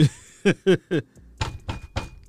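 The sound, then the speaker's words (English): Knocking at a door: one firm rap, then three quick knocks, a brief pause, and three more slightly duller knocks. No one speaks. “Who at the door?”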